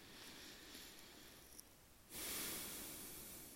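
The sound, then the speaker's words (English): Slow, deep breathing in and out through the nose by a person walking around and stretching, quiet: a soft, drawn-out airy breath followed by a fuller, louder rushing exhale, with no one talking. “In through the nose, out through the nose, slowing things down once in a while, making sure that that belly is rising.”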